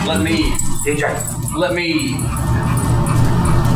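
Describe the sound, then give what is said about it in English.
A dog whimpers and lets out short yips amid a steady wash of background noise and metallic jangling, the cries rising and falling over a few seconds. “Here comes your flying dog”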